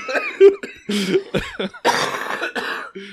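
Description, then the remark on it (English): A person coughs several times in quick, uneven bursts, fairly loud, with some raspy throat-clearing mixed in and no talking. “I just cough.”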